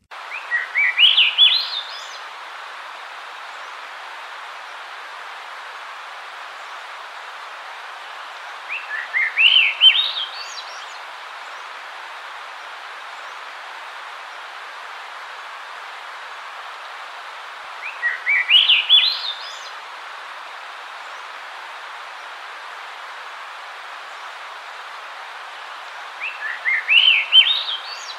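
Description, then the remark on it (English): A Swainson's thrush sings four times at roughly nine-second intervals, each phrase a quick series of airy, upward-spiraling flute notes, clear over a soft steady background hiss. “That once again was the Swainson's thrush.”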